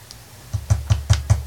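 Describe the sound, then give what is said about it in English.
Six sharp taps in a steady, quick rhythm, each a hard little click with a low thud behind it, like a beak pecking at window glass, with no voices. “It sounds like a pecking on glass.”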